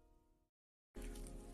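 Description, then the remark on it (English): After a stretch of silence, a throat clearing rasps in, then ends abruptly in a short, loud cough. “Again, with the coughing. Clear my throat.”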